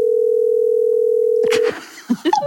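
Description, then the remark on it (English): A steady, unbroken telephone dial tone as a call is placed to a friend during a live show, holding one low-mid pitch for under two seconds, then cutting off into clicks and handling noise, followed by a few short blips. “Okay, I'm calling her now.”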